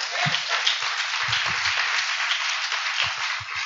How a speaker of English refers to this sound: Clap your hands and receive that right now.